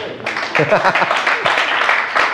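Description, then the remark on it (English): An audience breaks into clapping after a short quiet moment, a dense, steady patter of many hands that holds through to the end, with a few voices faintly mixed in. “You can clap.”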